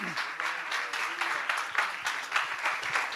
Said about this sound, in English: If you believe that, give God a hand clap of praise for that this morning.